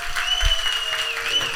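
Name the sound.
round of applause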